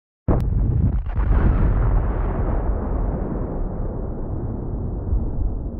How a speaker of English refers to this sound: Another explosion ripples out. This time you're sure that you got him. That should slow him down. The entire building shakes.